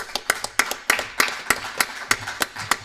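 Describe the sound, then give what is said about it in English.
Loud, sharp hand claps right into the microphone from two people welcoming a guest up at Trinity of Fairview, a quick, fairly steady run of a dozen or so crisp smacks over a few seconds, with no talking. “you didn't know it, but you got the two loudest clappers at Trinity of Fairview just welcomed you up here clapping in the microphone.”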